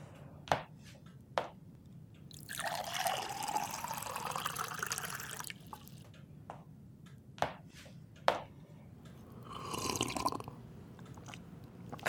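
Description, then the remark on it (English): Someone fetches a glass of water: a few sharp clinks, then a steady pour that rises in pitch as the glass fills, more clinks, and a second shorter pour. Fairly quiet, with no talking. “Planting a thought in my head just to get you a glass of water seems lazy”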